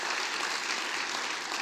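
An audience at PCC church gives a big round of applause for a guest speaker being introduced: a dense wash of many hands clapping at an even, sustained level with no voices standing out.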